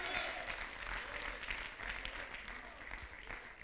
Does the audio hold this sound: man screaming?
no